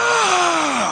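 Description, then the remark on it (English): A person imitates a parent's angry yell at children, a 'Viking yell' with no discernible words: one loud, drawn-out shout, harsh and strained, its pitch sliding steadily downward over about a second. “A Viking yell. They can't discern actual words.”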